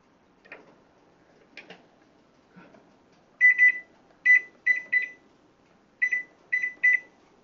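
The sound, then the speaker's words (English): A kitchen timer being set while rice cooks covered: a few soft clicks, then clusters of short, bright electronic beeps in quick pairs and triplets, fairly loud, with no talking. “Set our timer.”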